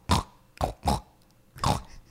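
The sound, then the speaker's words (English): A woman in a pig outfit imitates a pig with four short, throaty snorting grunts in an uneven rhythm, with a brief pause before the last one and no talking. “Your little pig noises are cute as shit.”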